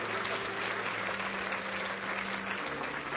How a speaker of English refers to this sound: Everybody else, clap your hands. Everybody else, praise the Lord.